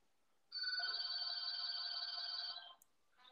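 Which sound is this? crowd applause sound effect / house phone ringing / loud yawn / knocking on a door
house phone ringing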